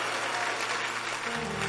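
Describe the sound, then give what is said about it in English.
An audience claps their hands in a dense, steady wash of applause, loud and continuous throughout, with a low sustained tone rising underneath near the end. “You better clap your hands and mention your name properly.”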